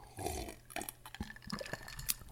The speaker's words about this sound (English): Hold on, I got to take a drink of water.